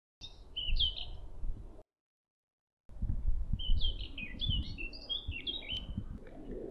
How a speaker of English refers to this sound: it's literally just me walking around and seeing what birds I can hear